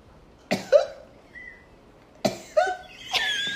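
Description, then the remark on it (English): A loud, theatrical cough: two harsh bursts, a pause, then two more hacking coughs ending in a rasping, drawn-out wheeze, with no talking. “Like he just did with the cough.”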